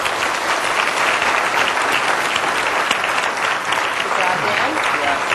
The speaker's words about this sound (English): Let's get a big round of applause for our panelists today.